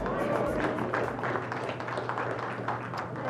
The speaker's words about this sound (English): In a little while in the sermon, you'll see how meaningful that applause is to me.